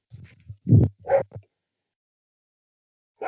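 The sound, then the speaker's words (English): A dog barks a few times in a quick cluster of short, sharp yaps, then gives one more bark after a pause, with no talking over it. “My dog, do you hear my dog barking in the background?”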